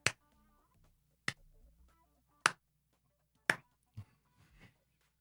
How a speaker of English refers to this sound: Sorry. This seems like the appropriate moment for one of these. Can we get a slow clap going for the Australian government?